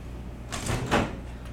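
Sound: door being pushed open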